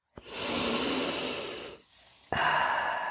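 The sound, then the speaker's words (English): A long, deep inhale rushes in, followed after a brief pause by a strong, breathy exhale, with no talking. “Okay, now we're going to take another breath, breathing up.”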